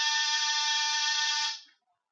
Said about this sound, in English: After disturbing 7 occupants of 7 different apartments and getting 7 nasty comments, I rang one buzzer.